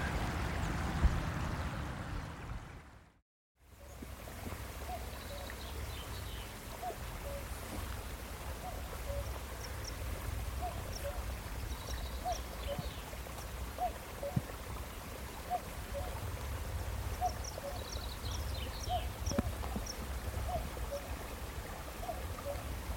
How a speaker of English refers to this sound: And that's the sound of a cuckoo calling across a little glen high up in the north of Scotland in Assint.